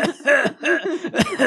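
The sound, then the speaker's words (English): Someone coughs three times in quick succession after smoking a cigarette, each rough, voiced burst separated by a brief pause, with no talking around it. “Like you inhale with your lungs. You don't cough it.”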